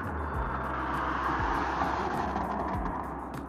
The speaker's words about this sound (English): Yeah, I see a lot of cars still on the roads.